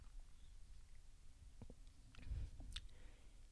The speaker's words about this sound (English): I'm about to take my first sip of Girl Scouts S'mores. We're doing it live. All right, here it is.